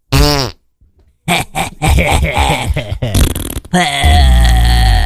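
A person loudly imitates farting with their mouth: a short blurt, a pause, then a long run of sputtering, buzzing raspberries ending in a low rumbling blast.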